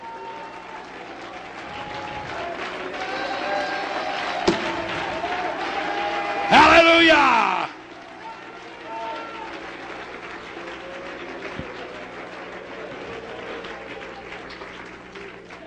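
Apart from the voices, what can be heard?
audience clapping hands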